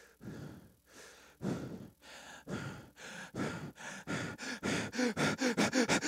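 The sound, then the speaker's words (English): A voice imitates the heavy, ragged breathing of a man running as hard as he can, starting with slow, spaced breaths that quicken into rapid, rhythmic panting and grow steadily louder, alone. “most all of them would say they would consistently hear the sound of a man breathing.”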